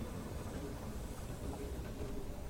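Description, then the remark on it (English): A speeding locomotive rumbles past with a steady, dense roar of rolling wheels and rail noise, loud throughout, with no voices. “The night switchman stated in his eyewitness account, he could not explain how he saw so many details as the speeding locomotive passed by.”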